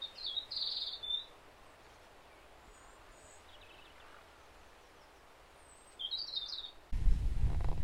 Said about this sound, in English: I think these birds are probably meadow pipits or finches of some description. I've yet to actually manage to get a definite identification on them, but I'm pretty sure they're meadow pipits. Lovely little birds.